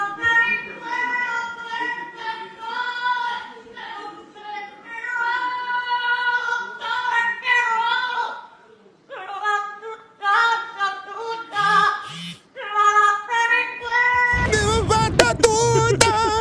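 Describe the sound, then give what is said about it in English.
A parrot sings a Spanish song in a wavering, tuneful melody of sustained, warbling notes with brief pauses between phrases, ending in a burst of harsh, noisy crackling. “Here's a parrot singing some classic tunes, excuse me.”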